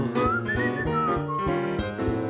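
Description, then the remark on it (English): A clear human whistle plays a short rising and falling melody over steady instrumental accompaniment, bright and fairly prominent for a couple of seconds. “If you get in trouble and you don't know right from wrong, give a little whistle.”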